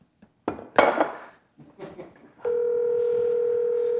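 A few clattering knocks and rattles, then a steady electronic phone tone starts and holds loudly to the end, like a call ringing through on the line before anyone picks up.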